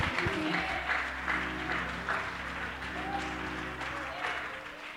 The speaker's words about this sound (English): Why don't you clap your hands while I drink a little water?